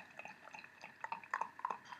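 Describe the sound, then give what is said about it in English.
Beer (W00tStout 2.0, from a brewery in Escondido, California) being poured straight from the tap into a glass, a soft liquid trickle with scattered crackling fizz and tiny popping bubbles, fairly quiet, with no voices. “Let's pour this. See how much carbonation we still have.”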